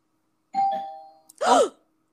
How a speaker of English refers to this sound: Doorbell. Who is that?